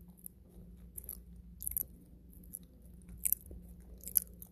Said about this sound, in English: always funny what faces people make when they bite and chew.